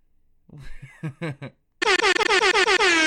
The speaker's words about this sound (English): Some, you know, like a little, let me get some of them air horns. Damn, we ain't got no air horns in this motherfucker?